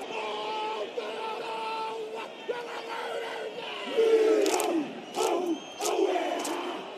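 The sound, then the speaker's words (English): The Murrayfield stadium crowd at a rugby match jeers a pre-match performance with a loud, sustained roar of many voices. The booing swells toward the end as sharp, shrill whistles cut through in repeated bursts. “Here was the Murrayfield crowd jeering it.”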